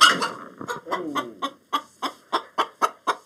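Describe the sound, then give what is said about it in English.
A large chicken, about 9 pounds (the size of a small consumer turkey), clucks in a quick, steady series of short, sharp clucks, a jumbled burst at first that settles into an even rhythm of about four per second. “The chicken is so big, 9 pounds, the size of a small consumer turkey, that she has to pull the camera back.”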